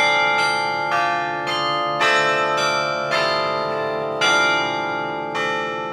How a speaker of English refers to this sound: Here at IU, since the tower is so new and we started during COVID, I think we were given a lot of freedom in terms of ringing the bells.